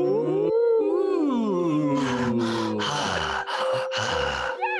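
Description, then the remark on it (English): A voice imitates deep, heavy breathing: a low drawn-out voiced moan, then four loud, rasping breaths in a steady rhythm, with no talking. “The deep breathing.”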